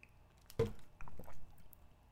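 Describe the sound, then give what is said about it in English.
Someone takes a sip of fruit punch Gatorade sports drink: a sharp wet slurp, then a soft swallow and a faint liquid gulp, with no talking. “I'm gonna review this fruit punch Gatorade.”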